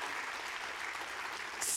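A crowd at the North Raleigh campus applauds steadily, a dense wash of clapping that holds even throughout, with a brighter burst of cheering rising at the very end.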